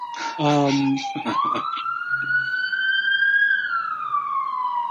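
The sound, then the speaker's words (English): A police car siren wails loudly in one long, steady tone that slowly climbs in pitch and then glides back down, following a brief burst of voice at the start. “The police are almost at your door.”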